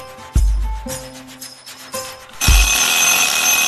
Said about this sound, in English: There goes the timer. Time to get that quiz out of the oven.